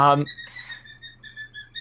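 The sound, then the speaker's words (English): A pet bird whistles and chirps in a quick run of short, high, bright tones, following a brief burst of a human voice at the very start, over a low steady hum. “my bird just wants to be on the podcast right now.”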